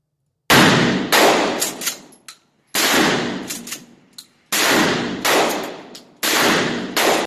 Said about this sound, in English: Even, while we're here, so you guys can hear the gunfire.